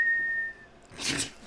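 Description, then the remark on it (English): A single steady, high-pitched whistle held for about half a second, imitating a butt whistle, followed by a breathy, noisy burst like a blown puff of air. “And every time you fly, your butt whistles.”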